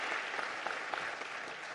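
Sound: audience applause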